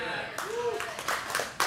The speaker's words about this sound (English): All right, I got one more clap. That's one more than I got in the first two services.